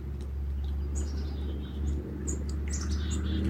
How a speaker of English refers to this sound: Family of chickadees joining us here this morning. Feel into the energy of their communication.